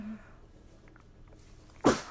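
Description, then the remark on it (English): A single sharp sneeze bursts out near the end after a quiet stretch, loud, with a brief hum of a voice at the very start. “Bless you.”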